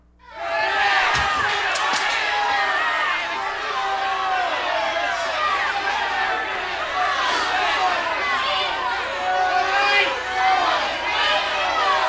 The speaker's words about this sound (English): And if you imagine it, can you hear the crowd now?